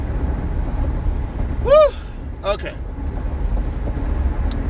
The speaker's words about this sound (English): are now in the car.